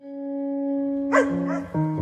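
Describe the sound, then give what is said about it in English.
A dog barks a couple of short times over a steady humming tone that carries through the whole moment; no one speaks. “Hey, it's a dog. It's not even my dog this time.”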